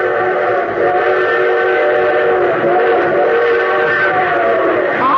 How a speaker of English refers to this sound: But our train whistle sounds closer. Well, of course it sounds closer. It's going to pass within a mile and a half of it.